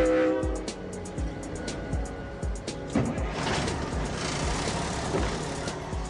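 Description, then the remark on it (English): A loaded log train rumbles past in Northland, New Zealand, its wagons clanking in a steady rhythm of heavy thuds, with a brief horn tone fading at the start. “In 2 months' time, the last log train in Northland will chug its way from Otiria near Kaikohe to the Marusumi chip mill at Portland, south of Whangarei.”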